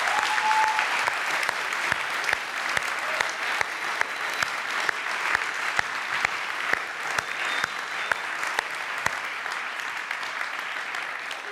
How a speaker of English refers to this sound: Who here is a teacher? Could you put your hand up? Can you just stand for a moment? Can we look around and can we give these guys a round of applause for what they do?